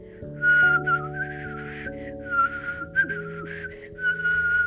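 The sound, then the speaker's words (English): A person whistles a light, meandering little tune to himself in several short phrases, clear, over a soft sustained musical backing with no talking. “Dopey whistled a little tune to himself.”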